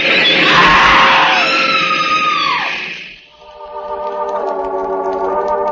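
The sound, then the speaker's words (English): A woman on a train platform lets out a loud, piercing scream lasting a few seconds as a train grinds to a stop, sliding downward in pitch before breaking off, followed by a steady, droning mechanical hum. “Quietly, the man who is death steps back from the edge of the platform as the train grinds to a stop. The woman screams.”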